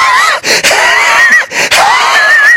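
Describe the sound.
A voice imitates a bear gasping and huffing after eating hot-sauce-drenched M&Ms, with loud, strained wheezy breaths in quick bursts, several short gasps separated by brief breaks, without any talking.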